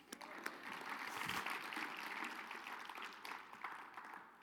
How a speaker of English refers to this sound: That's something worth clapping for, not because of me. You guys, everybody clap.